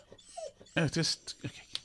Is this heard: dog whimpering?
yes